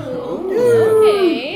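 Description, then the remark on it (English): A human voice imitates a cat's meow as an intro noise: one drawn-out, whiny vocal note that slides up, holds, then bends down, loud and alone with no other talk. “Oh, I see that you did a cat intro noise.”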